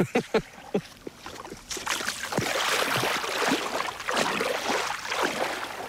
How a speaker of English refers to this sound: I'm looking at water which is cobalt turquoise, and you can hear it lapping, nice gentle little waves, and you can see way out, and the water is crystal clear.